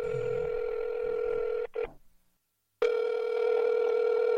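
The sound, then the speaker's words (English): A telephone ringback tone on an outgoing call: a steady, buzzy electronic ring that cuts off briefly into a second of silence, then starts ringing again. The sound is moderately loud, with no voices. “Oh, it's ringing.”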